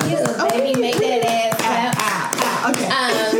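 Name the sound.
audience applause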